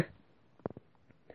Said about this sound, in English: Excuse me. Kind of burping a little bit. I'm sorry.